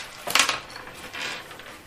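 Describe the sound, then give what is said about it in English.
Six-sided dice are rolled, clattering and tumbling across a hard surface in two short bursts of bright, rattling clicks, the first louder than the second, with no voices. “Did you roll any sixes on your six-sided dice?”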